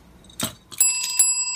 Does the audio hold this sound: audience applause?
no